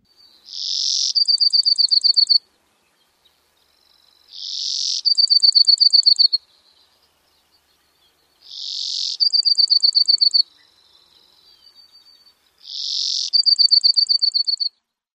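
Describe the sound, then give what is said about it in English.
A Brewer's Sparrow sings four repeated trilly phrases, each a buzzy high burst followed by a rapid, rhythmic trill, spaced evenly apart with clear silence between and no talking. “Because of this trilly, common song, I almost put Brewer Sparrows in the episode about trillers.”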